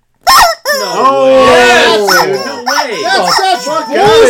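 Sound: rooster crowing sound effect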